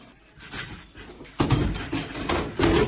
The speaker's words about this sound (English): I keep trying to fucking shut the door.